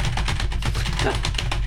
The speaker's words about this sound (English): You got a mechanical keyboard over there?